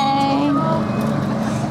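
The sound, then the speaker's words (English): A passing train produces a loud, steady rumble that fills the short clip, with sustained tonal hums and a faint whine riding over the dense mechanical noise. “There's a train.”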